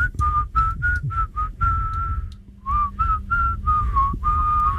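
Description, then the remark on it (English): A person whistles a wavering melody, a run of short notes followed by longer held tones, fairly loud, with breathy low rumble underneath and no talking. “In fact, you're such a bad whistler that I think that when we do it later, you should whistle out the songs”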